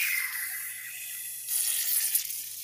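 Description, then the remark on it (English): A drink poured hard from an upside-down can makes a steady fizzing rush of liquid that surges louder about halfway through, with no voices. “Pour hard. Pour hard. Yeah, upside down.”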